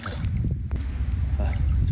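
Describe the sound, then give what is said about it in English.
Knee-deep floodwater sloshing and churning at a factory in China as rain starts again after torrential rain, a steady, heavy wash with low gurgling surges and a brief splash partway through. “The water level has reached my knee.”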